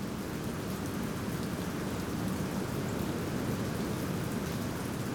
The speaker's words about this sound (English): A downpour of rain.